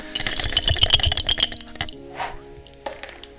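Dice rattle and clatter in a rapid burst of sharp clicks for over a second, then a few scattered knocks as they settle. Fairly loud, with no talking.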